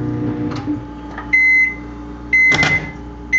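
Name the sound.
microwave oven beeping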